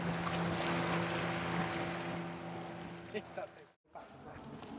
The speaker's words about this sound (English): You hear that? A little motorboat.